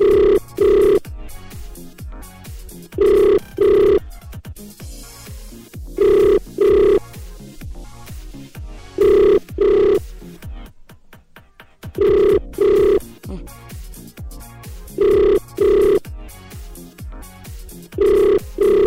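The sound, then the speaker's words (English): A phone line rings on an outgoing call, the ringback tone sounding in steady double bursts, about seven or eight pairs, over a low, constant background hum with no one speaking. “It's ringing.”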